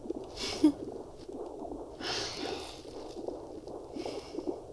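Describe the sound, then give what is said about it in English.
A rhythmic, muffled whooshing pulse beats steadily, like a fetal heartbeat on an ultrasound, played from a video, with louder hissy swells of static rising and fading every couple of seconds. “And right there's the heartbeat.”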